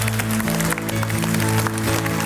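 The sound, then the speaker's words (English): A church audience claps hands in a steady, dense burst of applause for Jesus after a prayer, over a sustained low musical drone, with no one speaking. “It's worth giving Jesus another hand clap.”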